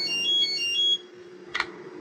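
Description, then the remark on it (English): A cell phone rings with a bright electronic melody of quick repeated tones for about a second, then stops, followed by a brief rustling click over a low steady hum. “Wait, are you going to take that? After all the grief you've given me over the cell phone?”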